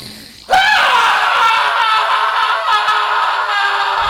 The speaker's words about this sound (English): Do you mind if I open the emergency hatch and just scream? Yeah, that'd be great.